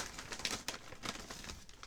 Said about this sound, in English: I wish you weren't crumpling it on the...